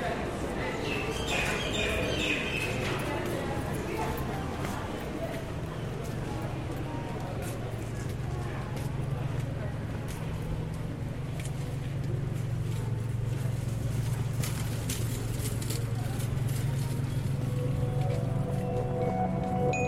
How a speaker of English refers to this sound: Foot traffic slowly gives way to vehicle traffic and birds as I exit the market.